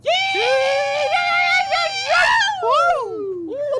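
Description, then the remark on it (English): A voice lets out a loud, sustained whooping rebel yell that warbles up and down in pitch, imitating a turkey's gobble, and ends with a long falling glide. “Threw in a rebel yell turkey in the end there.”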